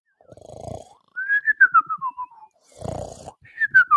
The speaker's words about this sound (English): We hope you enjoyed those ASMR snoring sound effects.